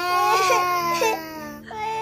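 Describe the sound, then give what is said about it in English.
A voice imitates a baby crying in her crib, as part of a children's story read aloud: a wavering, high-pitched wail sustained for about a second and a half, then a short break and a rising second cry. “His baby sister crying in her crib.”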